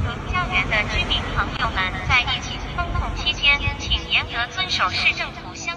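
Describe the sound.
A voice booms through a loudspeaker on a flying drone overhead, slightly distorted, over the drone's steady mechanical hum, broadcasting a message telling residents under lockdown to comply with COVID restrictions and not to open the window or sing.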